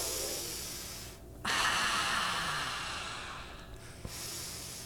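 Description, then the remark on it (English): Steady breathing through the nose, with a long rushing exhale and a brief pause before the next breath. It is loud and airy, with no talking. “Breathing.”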